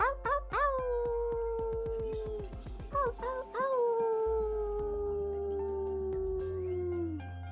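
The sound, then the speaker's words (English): A person imitates a wolf, letting out two drawn-out howls. The first is shorter and the second is longer, each sliding slowly downward in pitch. Both are loud. “End it off with a wolf howl.”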